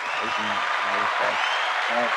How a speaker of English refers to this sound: It was a great list. Give that man a round of applause, man.